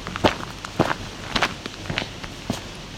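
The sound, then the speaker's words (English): Footsteps walking through a maple forest with a canopy about 70 to 80 feet high: about six crunchy, moderately loud steps at an unhurried, fairly even pace over a soft, steady background hiss, with no one talking. “Now we're walking through maple forest.”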